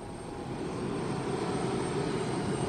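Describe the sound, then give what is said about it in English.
A steady, loud airplane engine drone fills the space, a constant low roar with a broad hum, like sitting inside the cabin of a Russian plane in flight toward the North Pole over fractured Arctic ice. No one speaks. “I'm getting ready to get on a Russian plane headed for the North Pole.”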